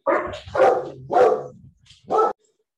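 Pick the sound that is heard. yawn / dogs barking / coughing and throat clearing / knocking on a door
dogs barking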